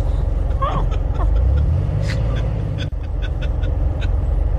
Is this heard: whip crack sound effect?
no